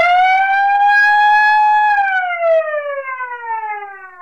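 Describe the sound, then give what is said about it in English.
A loud truck auto alarm siren wails steadily on one rising tone, then slides down in pitch over a few seconds, strong harmonics ringing, alone with no talking. “your auto alarms are certainly loud enough.”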